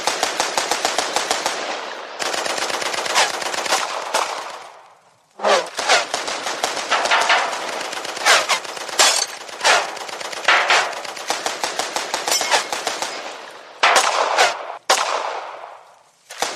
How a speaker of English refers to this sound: The entire family posted up at the windows, pulling guns out of shoes, belts, suspenders, and other crevices. They were all shooting into the woods, but it wasn't stopping the loud yelling barreling towards them.